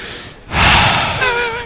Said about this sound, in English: Heavy breaths into the microphone. Good job. Hey, it's for dramatic effect.